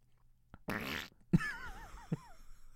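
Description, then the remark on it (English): A voice imitates a fart with a loud, buzzy, wet raspberry lasting under half a second, followed by a thinner wavering squeak and a couple of soft thumps. No words are spoken. “My fart noise was better than yours.”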